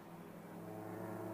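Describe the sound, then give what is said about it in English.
A race car engine roars steadily, its droning tone swelling slightly louder as it passes, as O'Shaughnessy's car crosses the line for the second time in a VARA race, leading by 4.2 seconds over Harris Koenig. “Here comes O'Shaughnessy across the line for the second time.”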